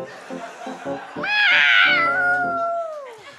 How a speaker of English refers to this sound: Meow, M-I-X. The noise that 1,009 kittens makes in Roman numerals.